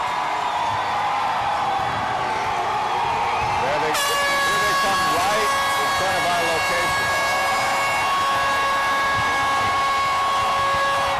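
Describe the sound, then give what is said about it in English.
The horn of a fire truck carrying players and family past a screaming crowd, with confetti dropping, blares abruptly a few seconds in, sustaining a harsh, steady multi-tone blast over the roar of the crowd and rumbling engine noise. “And here comes the second fire truck right here full of some players and family.”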